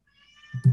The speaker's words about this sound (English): Oh, and oh, I hear a kitty in the background. Yep, that's my kitty. Ooh, is it black? Yep, I have a black cat.